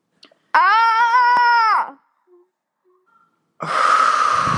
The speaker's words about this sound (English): You need to scream. You have to scream now. Go ahead. Louder.